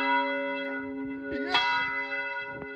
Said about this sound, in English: Then after that, we rang the bell. I like around 2:30 in the morning.